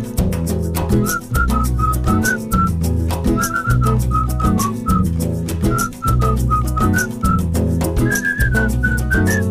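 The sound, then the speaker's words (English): Someone whistles a bright, stepping melody over a steadily strummed guitar and bass accompaniment, the whistle clear, carrying the tune throughout with no talking. “You all can siblar la melodía también, or whistle the melody too if you want to.”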